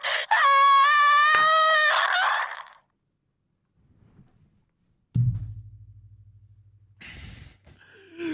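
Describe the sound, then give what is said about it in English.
A voice imitates a muffled, strained scream for about two seconds, wavering in pitch as if heard over radio comms from someone in a spacesuit drifting out into space, followed by silence, a low electronic hum and brief crackly bursts. “Hear super muffled screams over the comms as Veritas just goes out into the black.”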